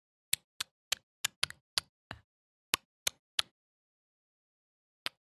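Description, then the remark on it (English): A voice imitates spider clicking with a run of about ten sharp, dry mouth clicks in an uneven rhythm, then a pause and two more clicks at the end. No talking. “They just continue making weird clicking noises, but now they're all moving toward you. There are... I try to click three back.”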